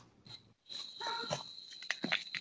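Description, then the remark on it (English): Crickets chirp in a steady, high-pitched drone that carries through the whole moment, with a few soft rustling, shuffling noises and no one talking. “I hear them crickets.”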